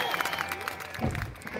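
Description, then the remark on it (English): An adoring crowd of citizens cheers and applauds in a steady, dense wash of clapping and voices as their ruler approaches a smithy furnace. It keeps going without a break for the whole short stretch. “And wave to the adoring crowd as you approach the smithy furnace.”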